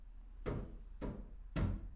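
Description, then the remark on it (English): Kitchen noises from someone preparing dinner next door: three muffled knocks or thuds at a steady, even pace, each fading quickly, over a low background rumble with no talking. “Someone preparing dinner next door.”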